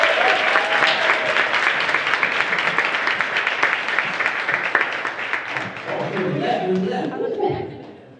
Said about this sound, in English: So let's clap it up